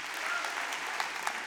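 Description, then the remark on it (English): A crowd applauds steadily, dense overlapping claps forming a continuous wash of noise, with a few sharper individual claps standing out near the end. No one speaks. “Somewhere in the ecosystem, they can hear you clapping right now.”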